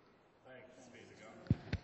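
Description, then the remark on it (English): Two short, thumping coughs land in quick succession, coming right after a stretch of quiet, murmured talking; the coughing is blamed on cedar or something in the air. “Sorry for the coughing, guys.”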